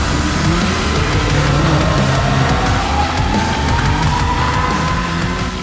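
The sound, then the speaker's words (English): A sports car engine in the Fast and Furious 19: Arctic Drift trailer roars steadily at full throttle, its whining pitch climbing gradually as it revs, over a loud, constant rumble with no voices. “Sounds like your engine's getting a little overheated.”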